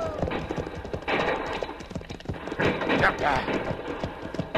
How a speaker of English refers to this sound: See, Pancho stampede the horses.